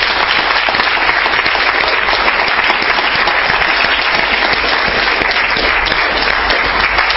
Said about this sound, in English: All right? Round of applause.